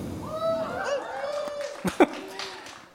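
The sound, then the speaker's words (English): A single drawn-out voiced boo from someone in an audience, reacting to the mention of the film Black Klansman: a steady, slightly wavering tone lasting over a second amid murmuring audience noise, followed by a couple of sharp knocks. “Wow, somebody booed.”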